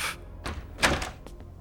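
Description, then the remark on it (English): A stuck door is yanked hard: a few sharp clunks and rattles of the knob and latch in quick succession as the doorknob comes off in the hand, with no one speaking. “Doorknob comes off in your hand from yanking too hard.”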